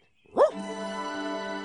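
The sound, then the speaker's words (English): A single sharp dog bark rings out, then trails into a steady, sustained whining tone that carries on to the end, with no talking. “Good dog.”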